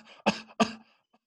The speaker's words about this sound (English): I thought you'd just do a dry cough to like, you know, just to make them think you're sick.